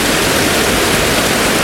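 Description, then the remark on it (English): A steady, loud roar of rushing water fills the scene, a waterfall pouring continuously with broad hissing noise and no pauses or voices. “Yeah, I'm gonna do one in front of this waterfall.”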